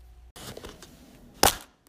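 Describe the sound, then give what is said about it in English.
A plastic cup is bent with a brief creaking crackle, then snapped in half with one loud, sharp, bright snap, made as a sound effect of a bone breaking, followed by silence. No one speaks. “I created this sound effect by simply using the cups we used for the horse clopping, and I snapped it in half, thus creating the sound effect of a bone breaking.”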